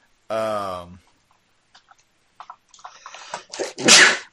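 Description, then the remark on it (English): A loud sneeze with a rising voiced intake, followed by a few faint clicks and then a second, breathy, explosive burst near the end. “excuse me. Bless you.”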